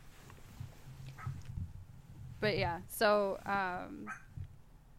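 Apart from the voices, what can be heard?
dogs barking and whimpering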